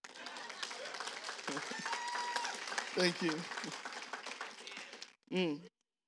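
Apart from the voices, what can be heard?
audience clapping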